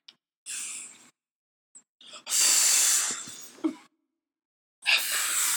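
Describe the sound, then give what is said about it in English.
Three bursts of forceful breath blown out through the lips, like puffing out candles, each a broad airy hiss lasting about a second, the middle one longest and loudest. “That's how kids blow out their birthday candles.”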